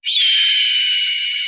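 A single loud, piercing shriek of a hawk swooping down holds steady for over a second, harsh and high-pitched with a slight downward slide, with nothing else around it.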